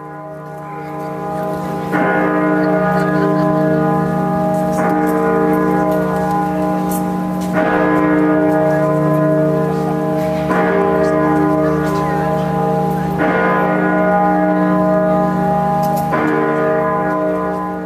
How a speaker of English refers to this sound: Great Peter at York Minster, England, cast in 1927 at the John Taylor & Company Bell Foundry, with a pitch of E-flat, a mass of 11,000 kilograms and a diameter of 2.38 meters, Great Peter uses a counterbalanced clapper to regulate the speed